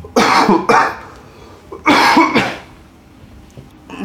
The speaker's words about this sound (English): Such an offensive question. He coughed. I know. His body rejected it. Oh, I'm still getting over the flu.